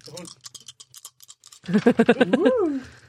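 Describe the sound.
A quick run of small hard clicks and rattles, like dice tumbling across a table, lasting about a second and a half, followed by a voice with rhythmic, laugh-like syllables.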